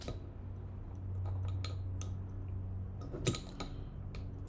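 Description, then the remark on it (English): A 330-milliliter bottle of 33 Acres of Ocean West Coast Pale Ale being opened: a few light glassy clicks and taps, then one sharp pop of the cap coming off, followed by faint clinks over a steady low hum. “And of course, gotta crack this open.”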